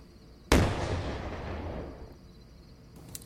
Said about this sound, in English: Well, yeah. I don't have to make a big explosion to start a fire.